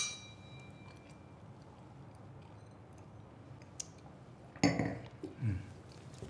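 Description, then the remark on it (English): Glasses clink together in a toast: one bright, ringing clink followed by a softer second touch, over a quiet, slightly hissy background with no talking. “So let's grab your glass of whatever your favorite drink is. Today, we are toasting to our guardian angels that are with us everywhere, all the time.”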